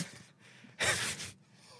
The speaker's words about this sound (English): Cough. Sorry.